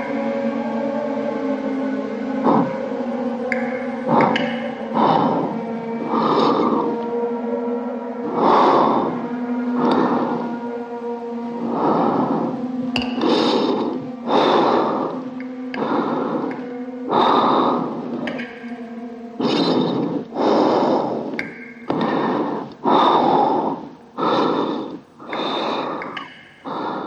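Heavy, rasping breaths pulse in a steady rhythm, snorting and gasping, growing louder and quicker toward the end, close up with no talking.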